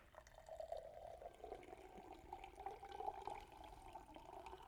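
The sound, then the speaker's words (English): About 12 ounces of water pours out in a steady, continuous stream for several seconds as a demonstration, a gurgling splash that rises and falls slightly, with no one speaking over it. “That's what was poured over him.”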